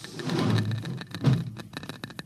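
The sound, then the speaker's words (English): A Geiger counter crackles with irregular, sharp clicks inside a cabin, strongest near a locked wall cabinet, coming in uneven bursts over a low rumbling hum, with the clicks growing more distinct toward the end. “Listen to that counter. Strongest over here.”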